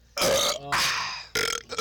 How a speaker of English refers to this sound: Oh, shit. How's that? Just got the burps in me, man.